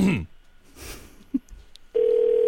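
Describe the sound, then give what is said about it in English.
A phone line's ringback tone on an outgoing call to a trading company starts abruptly about two seconds in, a loud, steady electronic hum that holds unbroken to the end, after a brief voice-like sound and faint line noise. “Okay, we're ringing.”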